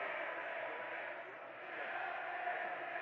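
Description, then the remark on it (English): A large crowd of many people roars continuously at a night event, a dense wash of many voices cheering and chanting together, steady and unbroken for the whole few seconds, with no single voice standing out. “Wow, there are a lot of people here tonight chanting and cheering.”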